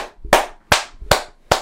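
Sharp, loud hand claps land in a steady rhythm, four of them about half a second apart, as a wrestling crowd claps together in time after Asuka retains the Women's World Championship. No one speaks.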